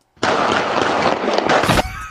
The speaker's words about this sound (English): So where is this gunfire just coming from? I'm guessing from this guy aiming, it's over here.